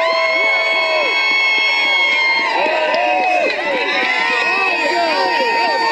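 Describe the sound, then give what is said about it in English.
A large crowd cheers and shouts continuously after a woman's political speech, a dense wall of voices with whoops and yells layered throughout, loud and sustained from start to finish. “She got a good crowd there too.”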